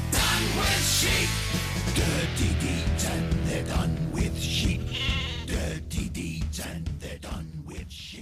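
Repeated sheep bleats, loud and close, ring out over a driving rock band with heavy drums and guitar, the wavering baas woven into the music as part of a comic song.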